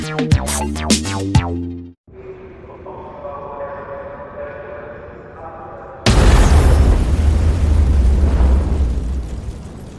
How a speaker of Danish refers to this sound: I den store østbanehal på Oslos hovedbanegård gav eksplosionen genlyd. Flere end 100 nordmænd var på vej hjem fra arbejde og passerede hovedbanegården ved 18-tiden den 2. juli 1982.